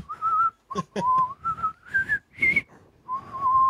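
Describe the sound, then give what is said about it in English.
A man whistles as he walks, a short, wavering melody, the notes rising and falling in a clear tone, with a few brief breaks between phrases and no talking. “And he starts walking, and it's like, yeah, he's whistling.”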